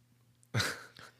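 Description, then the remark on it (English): A single short slurping sip of a sweet 9.5% beer from San Diego, California, followed by a quick soft breath out, with quiet hum before and after and no talking. “One sip.”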